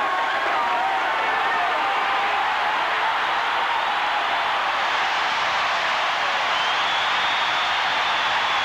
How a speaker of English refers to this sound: Here she comes. She'll come through that tunnel and listen to the crowd as she emerges.